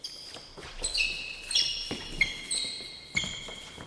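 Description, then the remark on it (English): A basketball sound effect: a ball bounces in uneven, repeated thumps, mixed with sharp, high-pitched sneaker squeaks over a low hum of background noise. No one speaks. “Basketball, give me the ball because I'm going to dunk it.”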